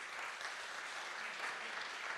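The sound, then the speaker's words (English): Steady audience applause, a dense crackle of many hands clapping at an even, sustained level throughout, with no one speaking over it. “That's got to be worth an applause, isn't it, or something?”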